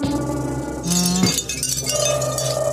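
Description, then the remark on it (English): Wind chimes shown in a documentary ring out in bright, shimmering clusters of metallic tones, overlapping with a steady, sustained hum beneath them. No voices are heard. “They're showing wind chimes.”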